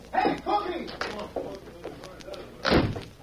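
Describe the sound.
A back door slams shut with a single loud thud near the end, following a few seconds of indistinct voices talking.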